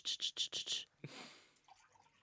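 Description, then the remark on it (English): Water is poured into cups: five quick splashy bursts in a steady rhythm, then a longer gush that trails off into quiet trickling. “So I'm gonna pour the water into these cups for a little bit, like...”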